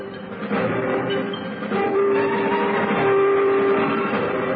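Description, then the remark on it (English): An evening train rumbles past steadily, its horn holding one sustained note for about two seconds partway through. No voices are heard. “In the afternoon, the telegram arrived for Holmes, and he made a great display of regret at having to leave Beaumont's by the evening train.”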